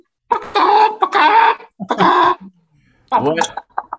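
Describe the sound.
A human voice imitates bird calls, a string of loud, squawking and clucking bursts with brief pauses, ending in a few short chirps.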